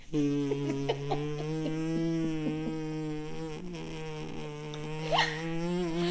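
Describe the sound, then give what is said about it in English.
A long, unbroken lip-buzzing raspberry, a voice imitating a drawn-out fart, holding a steady low pitch for about six seconds, fairly loud, with no talking. “Yo, fart me that long?”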